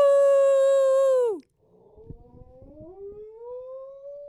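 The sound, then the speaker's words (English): Charlie the dog howls in a long, steady, high wail that sags and cuts off, then after a short break with some shuffling starts a new howl that slowly rises in pitch. “Charlie has gotten so good at howling that we didn't even have to say howl sesh.”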